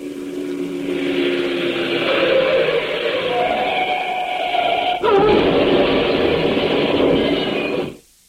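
A car crash: a long, shrill tire screech builds for several seconds, then a sudden loud impact followed by a harsh crunching, clattering rush that cuts off abruptly. No one speaks.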